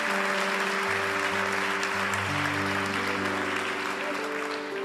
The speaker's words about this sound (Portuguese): Aplauda ao Senhor.